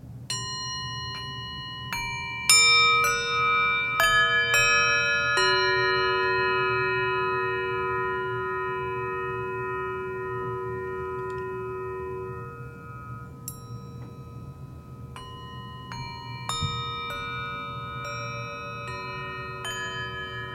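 Seven singing bowls are struck in quick succession, their bright, layered tones blending into a long, shimmering chord that slowly fades before another round of strikes rings out. No one speaks.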